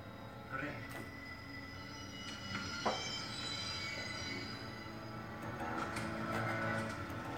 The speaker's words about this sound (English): Papa, the train! Yes. The train!